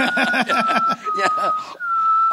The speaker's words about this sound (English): I can whistle. We got one. I can't do a tune. Incorporate the mouth, but I can whistle.